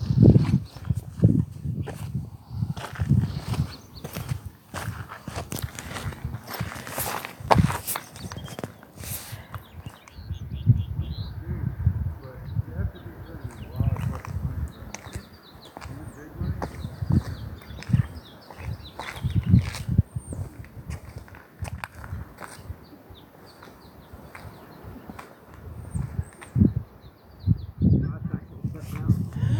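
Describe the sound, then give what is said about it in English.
Steady footsteps crunch along outdoors at a walking pace on a walk on the way to Page, Arizona, while faint birdsong chirps intermittently in the background, with occasional rustling and a hint of voices. “And now we're just walking, and you may hear some birdsong.”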